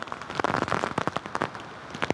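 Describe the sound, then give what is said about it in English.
Heavy rain pelts down in a dense, crackling wash, with sharp irregular bursts as gusts drive drops against the microphone, during a hurricane in Lafayette, Louisiana, with rain and wind intensifying and gusts up to tropical storm strength. Loud, with no voices. “Well, conditions really intensifying over the last 30, 45 minutes. The rain picking up, the wind as well.”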